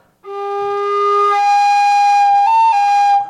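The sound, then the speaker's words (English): A flute is blown too hard while playing the low notes: a steady note whose low pitch drops away, leaving a shrill, squeaky upper register that jumps higher near the end before cutting off. “it squeaks or it cracks and it doesn't sound right.”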